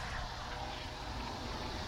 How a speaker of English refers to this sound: All right, that's a loud-ass airplane, so I guess I should go.